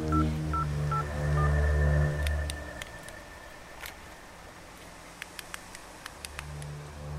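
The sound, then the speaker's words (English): A phone number is dialed to call a neighbor during a storm: a short run of electronic keypad tones in an uneven rhythm, followed by a low steady hum and a few sharp clicks. No one speaks. “I'm calling him.”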